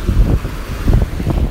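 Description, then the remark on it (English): Ocean waves wash against the coastline in a low, steady roar on a very windy night, with gusty wind buffeting the microphone and swelling the rumble every few moments. “We are down by the coastline listening to these waves.”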